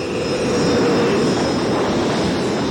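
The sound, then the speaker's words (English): A loud, steady roar of aircraft engines as planes take off four at a time from the RAF Odeum airfield to join a formation, with a dense rumbling low end and a constant hiss throughout, no voices. “Four at a time, and after orbiting RAF Odeum while the remaining planes joined the formation, they left the airfield behind in the direction of Farnborough.”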